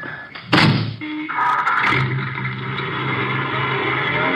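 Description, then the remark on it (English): A car door slams shut once with a loud, heavy thunk, then a low, steady engine rumble rises and carries on underneath. No one speaks. “My car. Get in.”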